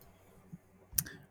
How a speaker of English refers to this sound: So let's roll the dice and see what's next.